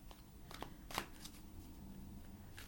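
A deck of oracle cards being shuffled, a quick run of crisp papery riffles and flicks with one sharper snap near the middle, fairly quiet with no voices.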